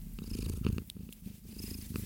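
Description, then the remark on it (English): A female cat purrs steadily, a low rumbling vibration pulsing in a continuous rhythm with no voices over it. “Oh, I hear her purring.”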